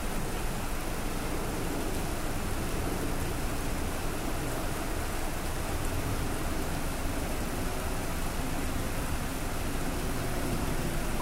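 Steady rain falls on a hard surface, a dense, even hiss that stays constant throughout with no breaks or talking, moderately quiet.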